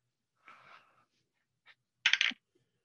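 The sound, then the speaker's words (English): A short rattle of dice, rolled for a perception check, tumbling across a hard surface, then a single faint tick, then a louder, sharper clatter as they come to rest showing 54. No voices. “Wow, this dice is doing well.”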